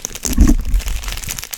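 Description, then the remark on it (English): Crinkly crumpling of foil card booster packs, from sets including Dissension, Return to Ravnica, Darksteel, Dominaria and Kaladesh; a burst of crackly rustling that swells briefly then continues as softer, uneven crinkles. “That's cracks crumpling, packs crumpling.”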